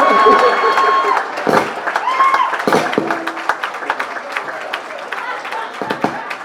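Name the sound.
audience applause and cheering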